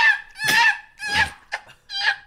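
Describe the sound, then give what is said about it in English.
A man's voice imitates a choking seagull: four strained, squawking bursts with a raspy, gargled edge, loud, separated by short pauses, with no other sounds. “Seagull choking.”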